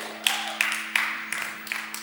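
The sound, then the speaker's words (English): Weak, sparse clapping during a sermon for a birthday: about six thin, quiet claps at a steady, unhurried pace over roughly two seconds, with a low steady hum underneath and no one talking. “That was pathetic. If you want to clap.”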